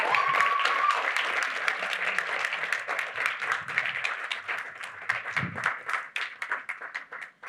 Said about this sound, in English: So if you could come up, we could give them a bit of a round of applause.